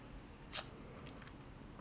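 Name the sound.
sipping beer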